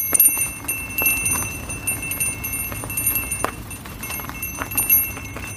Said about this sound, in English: You like the bell? Like this one. All right, so that's Timberbell. It's pretty simple. Seems like it works pretty well.